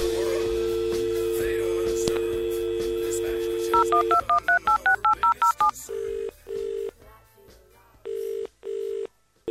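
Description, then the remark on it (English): A steady telephone dial tone gives way to a quick run of about ten touch-tone keypad beeps as a phone call is placed, then a repeating ringback tone pulses several times. No one speaks. “We got a phone call. Time for another phone call.”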